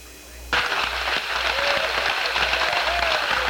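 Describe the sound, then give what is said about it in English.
Loud applause bursts out after half a second of quiet hum and keeps going as a dense, steady clatter of many hands clapping in Mission Control, Houston, as the Odyssey spacecraft's main parachutes are seen on TV, with faint cheering mixed in. “An extremely loud applause here in Mission Control.”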